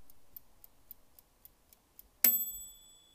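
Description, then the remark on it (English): A kitchen timer for baking cookies ticks steadily, about eight soft regular clicks, then a single loud bright bell strike rings out as the cookies are ready, with a sustained metallic tone that slowly fades. No one speaks. “You heard the bell, and I did as well.”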